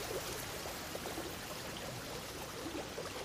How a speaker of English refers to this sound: A few days, or maybe even a few weeks or months later, a storm hits. The river floods, and the body of our Tyrannosaur is buried in mud and sand.